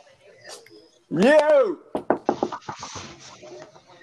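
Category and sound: household object, knocking on a door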